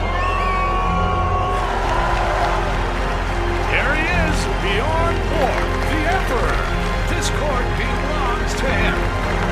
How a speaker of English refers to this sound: First out is McEnroe. The crowd is booing him. That's his first in Wimbledon final.